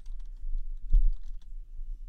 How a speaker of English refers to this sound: You're typing away over there.